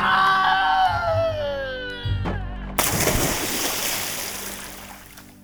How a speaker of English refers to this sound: And Tom fell off the ladder into the moat.